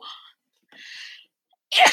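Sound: sneeze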